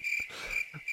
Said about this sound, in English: Crickets.